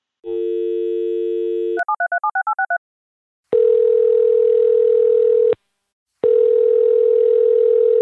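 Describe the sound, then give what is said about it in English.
A steady telephone dial tone gives way to a rapid string of keypad beeps, then two long, loud ringback tones separated by a short silence as the call is placed. No one speaks. “next up is getting you on the phone with Marsha”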